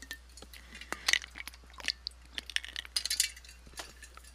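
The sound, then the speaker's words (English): Someone takes a sip of water, with a few light glassy clinks and soft wet mouth sounds scattered over several seconds, fairly quiet and with no talking. “Excuse me, that was my water.”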